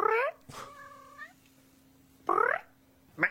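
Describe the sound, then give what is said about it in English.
A man's voice imitates a cat, giving four short, clear meows with pauses between them, the second one longer and steadier, fairly loud. “Now, I'm impressed by the sound he makes because that does sound like a cat, but what was that second part?”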